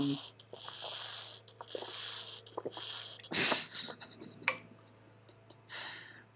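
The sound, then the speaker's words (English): A loud, wet slurp bursts out midway, sharp and hissy, surrounded by smaller scattered mouth and clinking noises over a steady low hum. “That was some loud slurping right there.”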